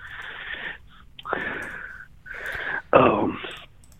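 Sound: heavy breathing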